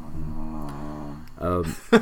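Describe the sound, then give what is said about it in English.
A sleeping dog snores: a long, low rumbling breath followed by a shorter, stronger snort, then a brief sharp sniff at the end. “Bono snores like a fucking jackhammer”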